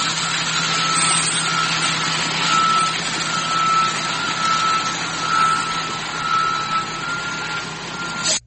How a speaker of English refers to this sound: I think it's more than one truck.